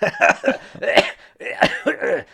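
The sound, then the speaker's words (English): A loud coughing fit: a rapid string of harsh, raspy coughs in uneven bursts, barely pausing for breath between them, with no talking. “I'm gonna cough and laugh all my way to the grave.”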